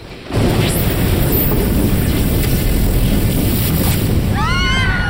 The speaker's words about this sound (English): There was no separation between the flash of lightning and the bellow of thunder which turned the marrow in my bones into jelly.